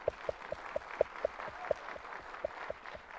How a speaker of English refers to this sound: Could you give the Lord a good hand clap of praise?